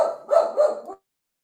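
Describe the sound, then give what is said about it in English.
A pet dog lets out a quick run of three or four sharp barks over about a second while a snow squall is blowing outside, then everything falls silent. “And those comments that were made by the dog are not necessarily conducive to high pitched.”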